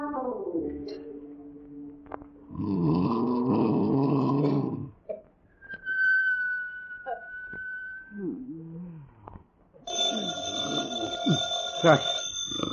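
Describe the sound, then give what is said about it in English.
A telephone rings at night in a family's house in the NBC radio show Archie Andrews, in two loud, buzzing bursts separated by a quieter stretch with a steady whistle-like tone and faint murmuring, the ringing returning strongly near the end. “Gee whiz, it's the telephone.”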